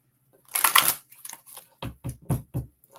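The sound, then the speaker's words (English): A deck of cards being shuffled: a dense riffling burst followed by several sharp taps and thumps as the cards are squared and handled, with no talking. “So, as I was shuffling the cards, this that I have over there, my pendulum, scooted over.”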